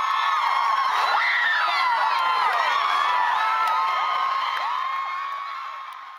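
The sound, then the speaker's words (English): A large crowd at a convention screams and cheers continuously as John and Hank crowd surf, many high-pitched voices shrieking and whooping together in a loud, dense roar that fades slightly toward the end. “Here's audio of John and Hank crowd surfing at a convention.”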